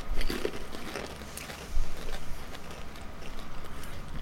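Crunching of tomato-flavoured crisps being chewed, a steady run of crisp, crackly bites repeating irregularly for a few seconds, with no talking.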